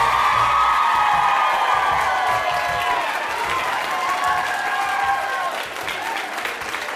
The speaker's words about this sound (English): All right, great round of applause, and not only for the radio show, but I'm guessing mostly for our guest,